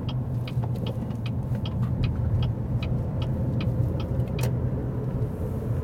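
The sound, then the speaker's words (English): A car drives steadily along a road, its engine a constant low hum beneath continuous tire and road rumble, with faint intermittent ticking clicks scattered through the steady noise. “Okay, so I'm going to pull off to the side of the road for just a moment here, because we're about ready to do something that's killer.”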